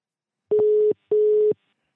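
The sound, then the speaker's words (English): An international phone ringing tone from a call to Sypha Sounds' phone in Abu Dhabi: two short, steady buzzing tone bursts in quick succession, each under half a second, at a fairly low pitch, with no one talking. “Does Sypha Sounds phone ring in Abu Dhabi?”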